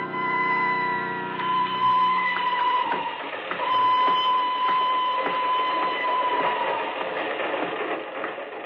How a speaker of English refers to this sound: I'm leaving on the train to Bern.